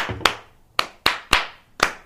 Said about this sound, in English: Then you do basically swoop to the left, swoop to the right, swoop it. Drop it. And then you clap three times.